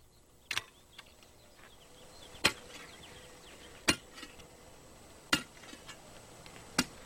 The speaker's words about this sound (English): And there he would chisel and hammer and dig away again until dark.